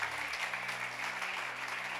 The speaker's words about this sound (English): Don't put God in a box. Give God a clap of him. Believe God.